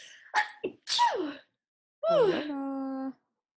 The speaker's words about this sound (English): Yeah. I have to sneeze.